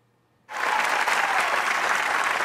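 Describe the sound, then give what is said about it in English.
Applause from an audience of agents and invited guests for Lieutenant Commander Dan Crenshaw starts abruptly after a brief quiet moment, then holds as a loud, steady wash of clapping with no voices over it. “Let's flip on the light for all the agents, guests to applaud Dan Crenshaw.”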